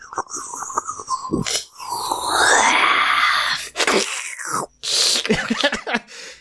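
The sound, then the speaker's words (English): A voice imitates the eerie whispering, slurping noise heard within 30 feet of a spot where the air and light shift in a role-playing game: breathy hisses, a rising wavering moan in the middle, then wet sucking and sputtering bursts, fairly loud and unbroken by words. “So all of a sudden, the air and light around that shifts, and everyone starts to hear this very strange whispering, slurping noise within 30 feet of that.”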